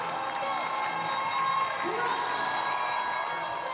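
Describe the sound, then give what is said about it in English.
A large crowd of fans, including Brazilian expats, cheers and applauds steadily at an Orlando Pride home soccer game, a dense roar of many voices with scattered shouts and whoops, sustained at an even level throughout. “Yeah, they cheered.”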